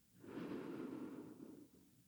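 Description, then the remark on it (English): A single long, deep breath drawn in during a guided breathing exercise, a soft airy rush that swells and fades over about a second and a half, with no talking. “So breathing in.”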